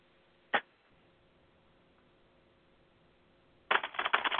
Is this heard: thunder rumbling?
no